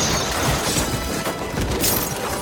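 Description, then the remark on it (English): A window shatters loudly as a woman leaping from a rooftop hits and smashes it, a dense crashing burst that keeps going as fragments break and scatter for a couple of seconds, with no voices. “She hits the window perfectly, smashes it, rolls onto a landing, and slides head first down a flight of stairs.”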